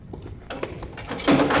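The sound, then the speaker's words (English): A heavy jail cell door slides along with a grinding rattle, then slams shut in a loud clang at the end. No one speaks. “There's water in your cell. All right, this way. Okay, watch the door.”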